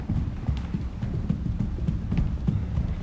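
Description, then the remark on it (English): Feet stomping on a floor during a mindfulness practice: a steady run of dull, low thuds repeating quickly and fairly evenly, moderately loud, with no voices. “As we get into a little bit more of alignment, let's take and stomp our feet. Stomp, stomp, stomp.”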